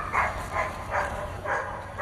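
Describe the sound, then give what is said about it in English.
Dogs bark all over the city of Gaza, a steady run of five or so barks spaced about half a second apart, over a constant low background hum of an outdoor city at night. “All over the city, dogs are barking.”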